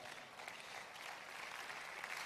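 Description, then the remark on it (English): An audience at a skill acquisition event claps steadily for a couple of seconds, a dense, even patter of many hands with no voices standing out. “And also, yeah, you can clap, you can clap.”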